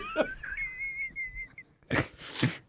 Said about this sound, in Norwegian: Nå, akkurat nå må jeg nyse, faktisk. Ja, det litt dumt, fordi det så irriterende når jeg nyser.